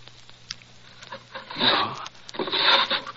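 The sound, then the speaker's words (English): Wooden desk drawers in a study, the upper right then the left, scrape and rub as they slide open in a search for a cannula, with a few sharp knocks, then two louder bursts of rasping, rummaging noise, no voices present. “I'll try the drawers. It's usually in the upper right. No, not here. Perhaps the left one.”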